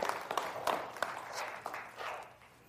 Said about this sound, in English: It's kind of a weak applause, isn't it?